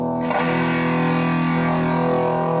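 A loud electric guitar chord, played through a distortion pedal that overloads the signal, rings out after a quick strum and sustains with a heavily distorted, gritty, buzzing, saturated tone, played alone with no voices.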